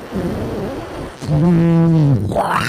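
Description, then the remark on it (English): A voice imitates an engine sputter: soft breathy rumbling, then a loud, low, buzzing drone held for about a second that sags in pitch and breaks into a rising, raspy squeal. “So, you hear this sputter. You hear the sputter like.”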